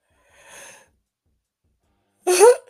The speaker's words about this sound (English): God bless you.